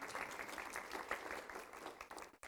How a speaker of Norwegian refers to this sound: Applaus til han.